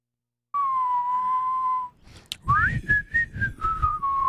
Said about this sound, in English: See, I'm not the only one that has to whistle when that comes on.